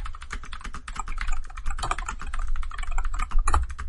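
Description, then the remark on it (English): Rapid, steady clatter of typing on a computer keyboard, fairly loud, with dense overlapping keystrokes and a couple of heavier key thumps near the end. “Much typing.”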